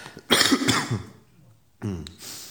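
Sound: person coughing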